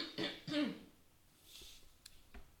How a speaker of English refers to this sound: Hold on. I clear my throat.